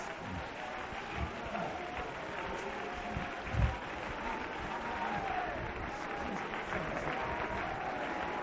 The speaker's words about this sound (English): There are people shaking in their seats tonight. There are people clapping. There are people running.